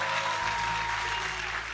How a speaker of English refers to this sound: If that's you, give him your final clap offering of the day.